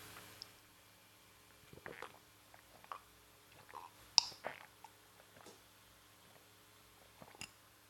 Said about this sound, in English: Let me get a sip of chocolate milk. Chocolate milk.